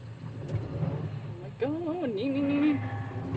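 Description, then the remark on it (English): A steady low engine rumble runs throughout, then a grass topper called a Sniper is lowered and turned on, engaging with a loud, wavering metallic squeal that bends up and down in pitch for about a second before settling into a grinding whine. “It makes a horrifying metal sound in the beginning.”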